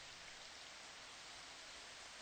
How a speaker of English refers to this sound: Rain, rain, and more rain today, too. I think it's even gotten more intense.